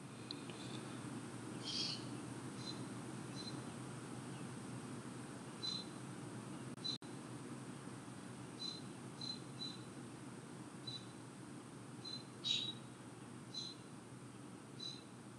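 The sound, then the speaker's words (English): Faint, scattered bird chirps from outside a window, short high calls repeating irregularly over a steady low ambient hum, with no one talking. “Maybe you heard some of the birds outside my window.”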